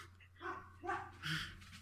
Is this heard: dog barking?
yes